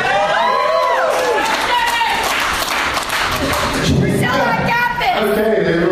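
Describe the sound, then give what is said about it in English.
A loud crowd cheers each other on and shouts continuously, many overlapping voices rising and falling in pitch, with scattered clapping and thumps mixed into the steady roar. “Cheering each other on.”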